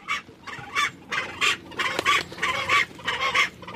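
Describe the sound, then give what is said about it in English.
A Fiordland crested penguin (tawaki) calls from its nest under large rocks in the forest at Milford Sound in 2017, hidden way back out of reach, with a rapid series of harsh, throaty bursts, about eight in under four seconds, moderately loud, with no one talking. “So there's a penguin in there, but it's way back, huh?”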